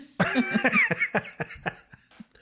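A burst of harsh, repeated coughing as a person coughs up a slice of cashew from the lung, several rough hacks in quick succession that grow weaker and more spaced toward the end, with no speech.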